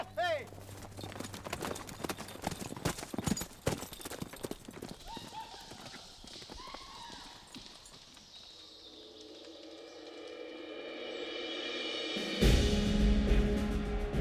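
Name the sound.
galloping horse hooves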